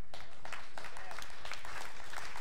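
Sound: audience clapping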